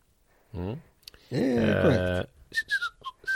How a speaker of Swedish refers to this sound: Nu har jag börjat vissla lite.